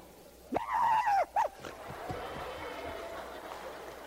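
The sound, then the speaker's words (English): A voice imitates a small puppy on a leash with two sharp, high yaps, a longer one then a short one, loud, followed by quiet background murmur. “Such a little nice puppy.”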